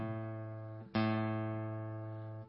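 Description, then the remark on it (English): A guitar string is plucked again and again as the guitar is retuned after a string broke, each low, sustained note ringing with rich overtones and slowly fading before the next pluck. No one speaks. “This is the awkward part where you got to go talk while you're tuning.”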